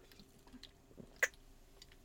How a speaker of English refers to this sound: I'll take a sip of this.